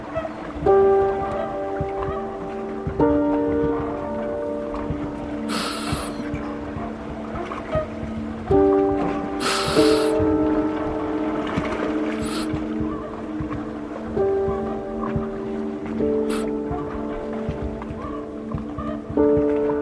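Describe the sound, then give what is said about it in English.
An underwater recording, with a muffled low rumble and layered droning hums that pulse in repeating waves, broken by a few brief fizzing, bubbly bursts. No voices. “Water, such an emotional sound. Like, what is it about these aqueous recordings and these submerged sonic landscapes that just stop me in my tracks?”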